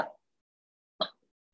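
One of two dogs in a car during a police traffic stop gives a couple of short, sharp barks, one right at the start and another a second later, fairly subdued, with quiet gaps between and no one talking.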